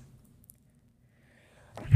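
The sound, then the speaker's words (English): A single sudden sneeze bursts out at the very end, loud and breathy after a stretch of near silence. “bless you.”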